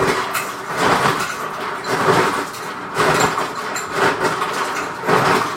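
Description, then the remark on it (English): Ice being crushed by a man for cocktails: a loud, continuous mechanical grinding and crunching that swells in rhythmic surges about once a second, with no voices over it. “Yeah, he's getting some ice going here.”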